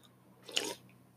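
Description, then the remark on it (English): A single quick, wet sip and gulp of water, soft, lasting under a second against a quiet background with no talking. “That was water.”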